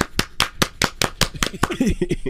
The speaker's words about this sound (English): Everybody clap your hands. Clap.